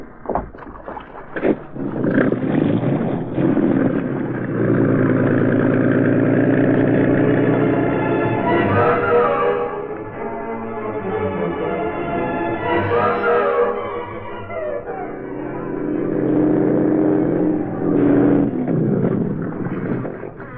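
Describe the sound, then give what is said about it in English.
A speedboat engine drones steadily for about twenty seconds as the boat runs across a river, its pitch rising and falling as the motor revs up and eases off. The sound is loud and continuous, with no voices. “reached the foot of 23rd Street, he found the Green Hornet waiting for him in a speedboat tied to the dock.”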